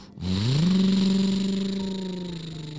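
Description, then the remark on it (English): A truck engine revs up sharply and then holds a steady, loud drone as it pulls away with a family riding in the truck bed, with no voices. “They were able to drive the truck back safely to Frankie's house.”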